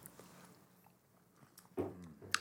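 people sipping drinks

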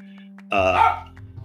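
dog barking

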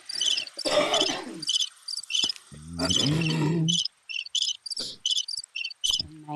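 crickets chirping

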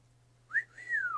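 person whistling

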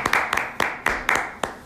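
applause

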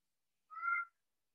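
cat meowing

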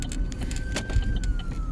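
ambulance siren passing by

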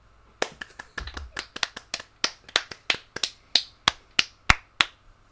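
hand clapping

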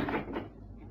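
door being closed

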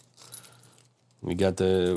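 keys jangling

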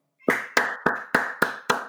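three hand claps

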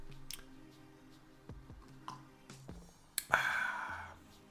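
sipping coffee

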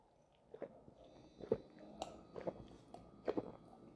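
sipping grape juice

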